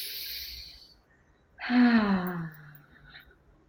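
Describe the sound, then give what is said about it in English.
A long, airy inhale is followed after a brief pause by a loud, voiced exhale that trails off like a deep sigh. It is a single breath cycle with no talking, taken during a guided breathing exercise. “Breathing in and out, and then taking it out and just bringing it to your face and breathing in and bringing it in on your chest and breathing in.”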